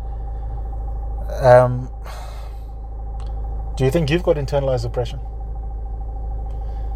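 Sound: car interior engine rumble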